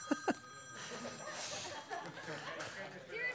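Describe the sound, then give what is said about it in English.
A telephone rings steadily and faintly, its tone sustained beneath murmuring voices and a few soft chuckles, with two short knocks at the very start. “Dang, phones. Is it the same guy every time?”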